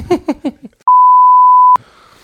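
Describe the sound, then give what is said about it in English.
A single steady, mid-pitched censor bleep sounds loudly for under a second, cutting in right after a few syllables of speech, with faint murmuring resuming once it ends. “I'll like bleep that.”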